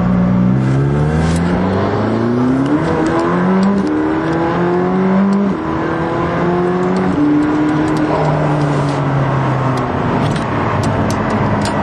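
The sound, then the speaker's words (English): A McLaren 620R sports car engine, set to sport mode for a speed run, accelerates hard, its loud roar rising in pitch through repeated gear changes, with the revs dropping and climbing again in a steady rhythm. “This car is really quick, quite quick. Down to second gear.”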